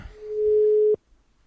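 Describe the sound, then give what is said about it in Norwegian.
A single steady ringback tone from an outgoing phone call, a plain mid-pitched beep lasting about a second before cutting off into silence, with no one speaking. “Jeg ringer bare, så får det bare gå så det går.”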